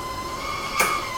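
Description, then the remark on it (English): A kettle boiling: a steady, even hiss with thin, high sustained tones running through it, and a brief sharp burst of noise near the end. No one speaks. “Should we wait on the kettle for a moment?”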